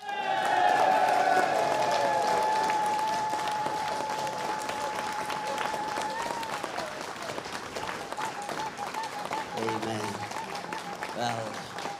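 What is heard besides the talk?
audience applause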